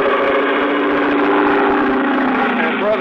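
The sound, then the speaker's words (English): A loud, steady motor drones continuously with a buzzing, layered roar: an airboat's powerful rear-mounted motor driving an airplane-type propeller on a roughly 12-foot, square-bowed hull with two high seats, skimming shallow bayou water. The pitch stays even throughout. “At the back was a powerful motor with a propeller of the airplane type.”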